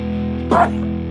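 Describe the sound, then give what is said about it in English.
A single loud sneeze from a man bursts out suddenly, sharp and forceful with a strained, high-pitched edge, lasting a split second over a steady low electrical hum. “That was a dad sneeze. That was loud and like a weird high-pitched thing in there, too.”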